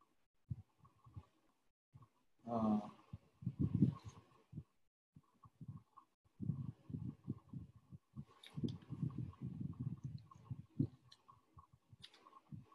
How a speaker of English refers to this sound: I'm just turning the pages to take you to something that is very, very important.